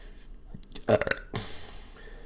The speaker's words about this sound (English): This is number 2 burp podcast.